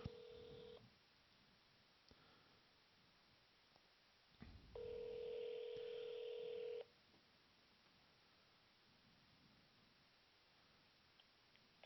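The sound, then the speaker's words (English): Electronic telephone dialing tones as a call is placed to a radio station's hotline: a short beep at the start, then a louder, steady tone holding for over a second, clear against a quiet background with no talking. “I'm going to call the radio station. Here we go on my secret bat phone with the secret hotline number that you'll never have, but I always have.”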